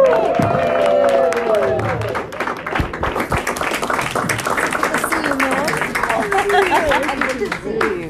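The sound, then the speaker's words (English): An audience applauds with dense, steady clapping that fills the whole clip at a fairly loud level, while voices call out and chatter over the applause. “So without further ado, we're good, and we just want to close it out, and we're good, and we'll give yourselves a round of applause.”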